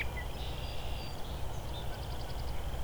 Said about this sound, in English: I can hear some Canadian geese too.